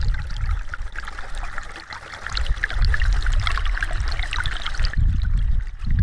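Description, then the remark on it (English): Continuous gurgling, sloshing flow of thick sewage and fecal matter through a trailer's toilet drain pipe, fairly loud, with churning low rumble and bubbling texture throughout, no voices. “And then I'm going to run over here and see if we can pick up any of the audio from the toilet.”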